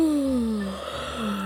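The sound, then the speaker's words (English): A big, drawn-out yawn from Scout the dog on Christmas morning, as the family drives to the seaside for a swim, with a voiced, moaning tone that slides steadily downward in pitch, lasting about a second and a half, fairly loud with no talking. “As they drove to the seaside for the family's swim, Scout let out a huge yawn.”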